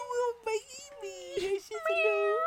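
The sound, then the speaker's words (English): A person imitates a cat with a string of drawn-out, wavering meows, three or four in quick succession, fairly loud. “She's a little kitty. What a baby.”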